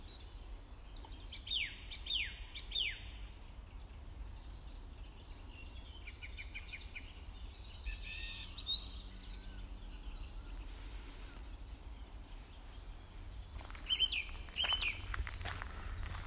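A song thrush sings outdoors in bursts of repeated, bright phrases with pauses between them, clear, over a low, steady background rumble of wind.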